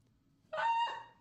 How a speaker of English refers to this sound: What was that? A chicken? A chicken?